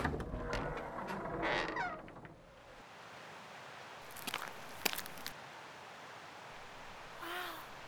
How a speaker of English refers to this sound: Teresa unfastened the huge, complicated lock. And the heavy metal door that had kept them alive for the last 5 years swung open.